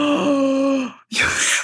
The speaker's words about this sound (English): Why does you got me gasping like this?